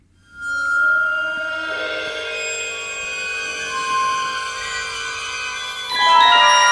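Shimmering orchestral film-score music, a time motif cue heard before the DeLorean car reveal, with sustained, layered high tones and bell-like resonances swelling steadily, building in density before a brighter surge near the end, with no one speaking.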